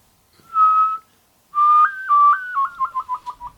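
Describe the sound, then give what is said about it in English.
A person whistles a steady held note, then a stepped two-tone pattern that breaks into a quick warbling trill, made by moving the tongue above and then below the opening of the mouth, clear with no talking. “No, I was just whistling.”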